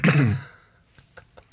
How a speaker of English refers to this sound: Cough.